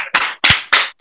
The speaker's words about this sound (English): So we're gonna give it to the tens of thousands of people who was protesting in Switzerland for gay marriage. We are with you in spirit. Fight for your rights. Clap it up for them, too.